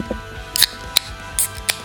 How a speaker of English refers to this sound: It's time to crack these open. All right, here. Let's do a double one, man. We haven't done a double tap in a while.